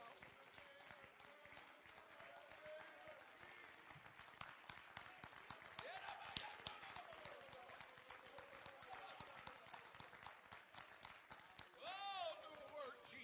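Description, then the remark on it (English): An audience claps hands unto the Lord after a prayer, steadily and densely for several seconds, a full room of applause with voices calling out over it, swelling briefly toward the end. “And we clapped our hands unto the Lord right.”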